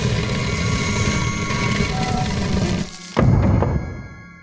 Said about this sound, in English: With the sound of grinding stone and another puff of stale air, Florence Beauregard's secret fireplace door swivels open, revealing the staircase down to her hidden occult cellar.